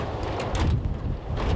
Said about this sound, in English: I mean, this is fantastic weather, absolutely phenomenal. It would be even better if it wasn't raining. The wind blowing the rain feels like 5p pieces hitting me on the head.